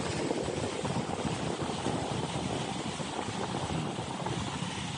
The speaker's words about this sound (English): This makes me calm. Watching boats on the water. Here in the ocean. The symphony of supply chain is moves along.